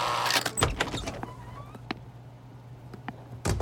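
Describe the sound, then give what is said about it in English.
The door of a small room with concrete walls opens with a sharp latch click and a heavy clunk, followed by a few softer knocks and creaks, then a final solid thud near the end. “A woman walks through the door, perfectly groomed from head to toe in a navy blue suit.”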